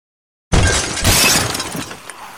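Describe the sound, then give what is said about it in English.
The window glass of an inn shatters with a sudden loud crash, a bright burst of breaking shards followed by a second surge of tinkling fragments that trail off over about two seconds. “The window of the inn shatters, and 100 pairs of arms snake around the bars, the frame fast filling with wights, clawing and clambering over and around one another to try and get inside.”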